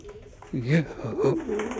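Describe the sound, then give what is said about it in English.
A raven calls up close with a few low, warbling, throaty notes that rise and fall in quick succession, moderately loud against a quiet background, with no talking. “It is time, Alex. for me to show you my Raven.”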